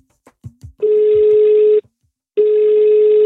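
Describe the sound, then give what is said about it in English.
A few soft clicks, then a phone call to a chef ringing out: two long, steady, buzzing ring tones, each about a second, separated by a short pause, with no talking. “So let's give her a call.”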